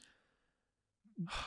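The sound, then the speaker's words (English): A soft breath fades out, followed by a pause, then a loud, heavy exhale of someone breathing hard after reading aloud. No words are spoken. “You know, tried like my really breathing hard.”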